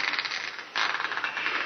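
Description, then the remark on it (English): Dry, rasping creaks of an old house settling, a steady grinding texture that briefly swells louder partway through, fairly loud with no voices. “And the old house creaked like a sick old man in a squeaky bed.”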